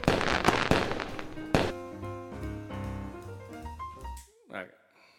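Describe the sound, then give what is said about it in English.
Fireworks being set off outside: a rapid cluster of sharp bangs and crackles, followed by another loud pop, then fading into tonal, voice-like sounds and a brief whistling sweep near the end. “because these goddamn Mexicans are lighting off fireworks.”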